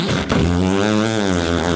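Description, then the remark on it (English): A voice imitates an electric can opener: one steady, buzzy hum held for about two seconds at a fairly constant pitch, wavering only slightly, loud and with no other sounds. “Electric can opener.”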